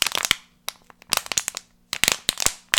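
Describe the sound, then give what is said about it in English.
The sound the creature Larry makes, like a metal can being crunched, with sharp crackling snaps in three uneven bursts separated by brief pauses, like bones cracking. The crackles are bright and fairly loud, with no talking. “every time I heard it, I'm like, it's just someone, like, crunching a can”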